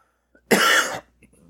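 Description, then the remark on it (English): A single harsh, raspy cough bursts out, lasting about half a second, with near silence before it and only faint, soft sounds after. “You didn't have a cough at the game.”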